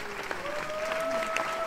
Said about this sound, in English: So that was for the clapping sound effects to come in afterwards. So yeah, the clapping sound effects will come in after that.